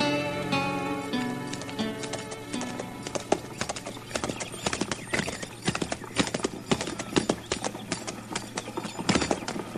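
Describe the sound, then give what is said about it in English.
A horse whinnies with a long, wavering neigh at the start, followed by a busy, uneven run of hooves clip-clopping on hard ground as several horses shift and step about at a crowded hitch rack. “move that horse, urine over, so I can get mine in there. This hitch rack's pretty crowded”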